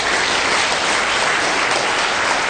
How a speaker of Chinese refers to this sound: 所以呢，让我们再一次以热烈的掌声欢迎大堪布在百忙中拨冗来到我们的课堂。